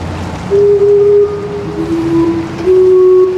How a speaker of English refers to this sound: You know it's time to sound the alarm when the famous Gastown steam clock whistles and there's not a single tourist in sight.